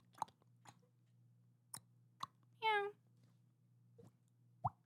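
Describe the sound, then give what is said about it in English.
Mouth sounds imitating dripping water: a handful of sharp, wet plops and clicks at irregular intervals, with one longer warbling, voiced bloop in the middle, over a faint steady low hum. “If we got any, you've never heard of water drip?”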